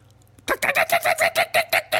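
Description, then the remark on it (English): A voice makes a fast run of about ten sharp, clucking clicks in steady rhythm, loud, imitating a dolphin's chatter, after a brief quiet start. “Cluck, cluck, cluck, cluck. That's the worst dolphin.”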